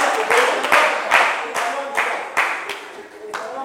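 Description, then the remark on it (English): A crowd claps together, a dense, steady wash of many hands with periodic sharp accents, sustained for several seconds without any voices. “And you are clapping.”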